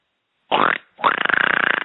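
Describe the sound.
A voice imitates a pig, giving a short snorting grunt followed by a longer, rapidly pulsing squealing oink, loud and nasal with a rough, buzzing texture.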